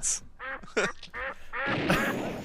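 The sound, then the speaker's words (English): A duck quack sound effect: a series of nasal duck quacks, about four or five in quick irregular succession, loud, followed by a noisier, raspier burst at the end. “Duck shot.”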